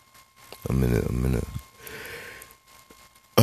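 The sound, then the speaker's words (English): A person lets out a long, voiced yawn that rises and fades, followed by a breathy exhale, fairly loud, with a sharp noise cutting in at the very end. “I'm sorry for yawning, but y'all know, y'all true fans, listeners know, dial that third shift and kicks my ass and I'll be tired.”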